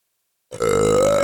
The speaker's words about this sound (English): That's the side effect of making that fart noise I made. And swallowing air, burp, followed by a burp.